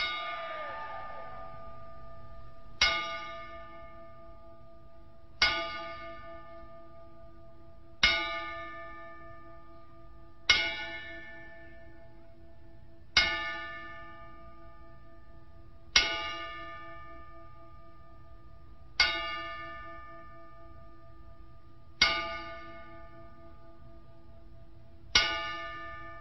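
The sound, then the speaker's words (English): A single bell is struck ten times as a bell salute, at a slow, steady pace, each clear ring lingering and fading before the next. The strikes are evenly spaced with no voices. “Maybe we can give them a couple bell salute.”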